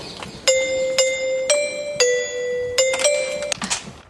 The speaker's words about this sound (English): Coolest doorbell ever, and I suppose it's possible that Prince Harry has a God Save the Queen note to it.